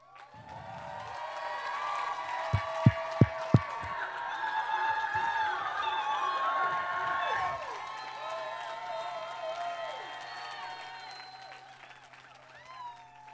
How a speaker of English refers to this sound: I think that's a bigger round of applause than you ever got preaching.